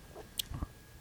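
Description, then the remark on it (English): An animal chews up pips and spits them out: a sharp little crack followed by two soft, wet, squishy bites, brief and quiet, with no voices. “Yes, no, she spits them out. chews them up and spits them out.”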